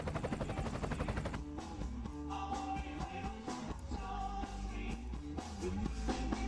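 A helicopter's rotor chops in a fast, steady thudding pulse for about a second, then a loud band track with steady harmonies takes over, the chopping buried beneath the music.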